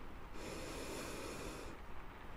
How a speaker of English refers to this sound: Oh, okay, yeah, so breathing's sounding nice and normal. I'm not hearing any fluid on the lungs or anything like that.